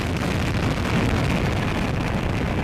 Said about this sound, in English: T-minus 10, 9, 8, 7, 6, 5, 4, 3, 2, 1. And liftoff of the United Launch Alliance Delta IV rocket carrying the Aspace 6 mission for the United States Air Force.